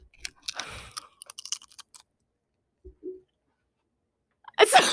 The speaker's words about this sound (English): So go right up to the microphone and crunch. Go.